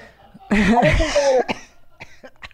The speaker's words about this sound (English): Sorry. I coughed into your mic.